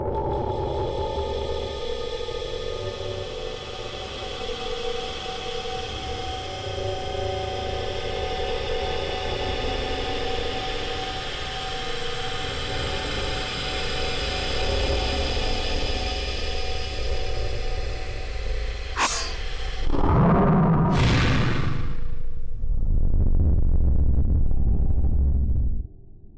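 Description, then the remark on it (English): A steady, droning engine roar with humming tones builds for about twenty seconds as vehicles in a loading bay are remotely made to accelerate with brakes engaged, then sharp blasts break in, followed by a loud booming explosion of the loading bay and deep rumbling that cuts off abruptly. “So I just blew up the loading bay for no reason.”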